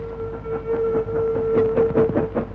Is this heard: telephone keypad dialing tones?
no